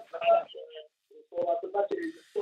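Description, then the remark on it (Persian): Broadcast-style audio with voices and tonal music plays from a TV in the background of a caller phoning a call-in program from Jam, sounding thin as if picked up through a phone line. “صدای تلویزیون رو کم کنیم و تلفن با هم صحبت بکنیم ها.”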